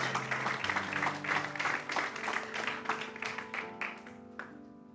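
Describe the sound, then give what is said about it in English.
An audience claps hands together in a steady, lively rhythm, the crisp claps filling the space over sustained organ or keyboard chords, gradually thinning out toward the end. “Oh, everybody want to clap their hands.”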